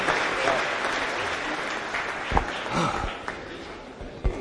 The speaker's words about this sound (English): Come on, let the church give a hand clap. Let church give a hand clap. Hallelujah.